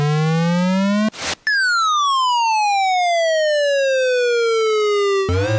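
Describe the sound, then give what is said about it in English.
A retro video game baseball effect: a buzzy rising tone, a short burst of noise, then a long, loud electronic whistle sliding steadily downward before another noisy burst cuts in. It depicts the pitched ball coming in, a swing, the ball flying and landing in the outfield. “That first bit is the ball coming in right here.”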